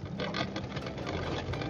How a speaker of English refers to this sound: Man. Fucking lawnmower.